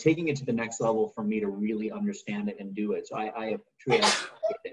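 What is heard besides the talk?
sneeze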